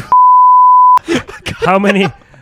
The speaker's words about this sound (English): So much beeping, so much removing.